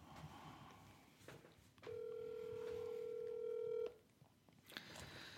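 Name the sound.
telephone dialing tones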